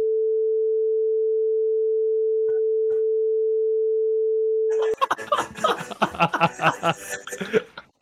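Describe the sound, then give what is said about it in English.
A steady pure tone hums for several seconds, then cuts to laughter run through a robotic voice effect: buzzy, metallic bursts in a rapid, uneven rhythm lasting about three seconds. “Look at his laughing going through the robot voice.”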